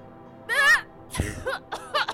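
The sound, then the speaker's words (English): A short, theatrical cough from one person: a voiced, throaty burst followed by a couple of quick rasping hacks over about two seconds, with no speech around it. “Malovia coughs.”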